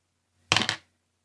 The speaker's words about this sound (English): I'm going to roll the dice first